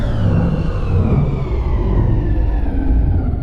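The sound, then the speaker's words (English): A loud, steady spaceship engine rumble winds down as the engines disengage, its droning pitch sliding lower and lower over a few seconds as the power fades, with no voices. “Engines are disengaged. We're drifting.”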